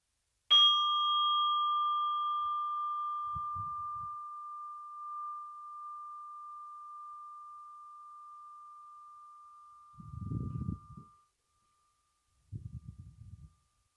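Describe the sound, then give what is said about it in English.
A single strike of a meditation bell, rung to begin a breathing meditation, rings out with a clear, pure tone and slowly fades over about ten seconds, with a few soft low rustling sounds near the end. “And I will ring the bell to invite you to concentrate on yourself and your breathing.”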